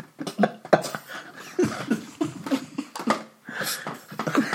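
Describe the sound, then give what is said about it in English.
A person coughs hard and repeatedly in rough, rasping bursts with hacking and gagging sounds between them, a sustained fit lasting several seconds without any talking, after swallowing some weed they had been chewing. “just coughed up a hairball.”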